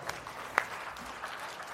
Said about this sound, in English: Somebody give God a round of applause for that.